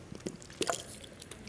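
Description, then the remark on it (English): Someone takes a swig of water: a few soft, wet gulping and swallowing sounds in quick succession, quiet, with no talking. “All right, so let me get a swig of water.”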